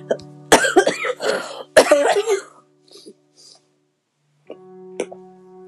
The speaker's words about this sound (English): Sorry about that, guys. I had a cough.